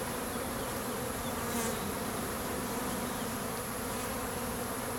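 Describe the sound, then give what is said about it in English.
A dense, steady hum of many female worker honeybees buzzing around the opening of an open hive while a beekeeper works. The swarm drones continuously with no talking and only slight swells as individual bees pass. “The reason I'm calling them girls is because all of the worker bees are female.”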